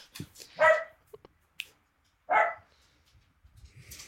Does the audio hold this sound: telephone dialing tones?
no